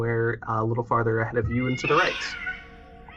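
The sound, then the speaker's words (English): A man speaks, then his voice breaks into shrill, rising yowls and screeches imitating cats fighting, loud, fading out over the last second. “you hear the sounds of what sounds like a cat fight going on”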